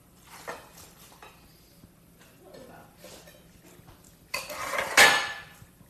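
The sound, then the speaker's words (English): Dishes and cutlery clink at a dinner table, scattered light taps and scrapes giving way to a louder, busier clatter near the end, with faint voices murmuring underneath. “So we're gonna take a quick break because I can't race during dinner.”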